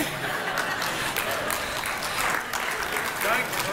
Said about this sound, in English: No, don't clap. Actually, I retired from dad jokes several years ago.